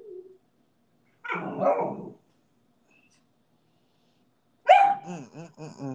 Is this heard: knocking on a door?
no